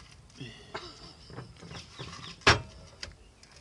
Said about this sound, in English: Oh! The parakeets are back. Those are the ringneck parakeets.